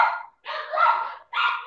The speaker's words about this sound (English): I don't know why my dogs are freaking out. It's the Darth Vader.